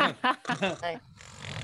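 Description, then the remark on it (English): A person imitates a loud snore with their voice, making a few quick, rough voiced bursts and then a softer, breathy rasp. No real words are spoken. “That's my snore noise.”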